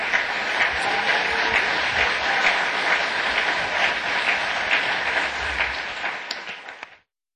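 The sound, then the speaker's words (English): An audience applauds the panelists of a panel discussion, a dense wash of many hands clapping at an even loudness for several seconds before it thins out and stops abruptly. “I want to thank all of our panelists today and give them a round of applause.”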